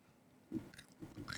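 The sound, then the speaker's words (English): A quiet bite into Bunch of Crunch chocolate candy, followed by a few seconds of crisp, crackling chewing in uneven bursts. No one speaks. “Well, if you want a little more expensive mellow corn pairing with Bunch of Crunch, this is it.”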